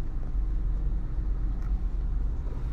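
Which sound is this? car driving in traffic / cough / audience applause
car driving in traffic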